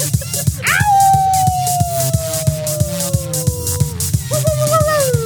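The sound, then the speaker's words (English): People howl like wolves: one long howl slides slowly downward for about three seconds, then a second, shorter wavering howl follows, loud, over a steady rhythmic musical beat. “Until next time, keep spooky. Keep howling.”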